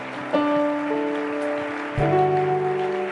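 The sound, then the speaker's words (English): A crowd claps continuously in a dense, steady patter to welcome a bishop, beneath sustained electronic keyboard chords that shift to new harmonies twice, with no talking. “Keep on clapping your hands.”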